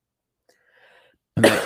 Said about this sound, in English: Are you okay? You've been coughing for the last 16 weeks.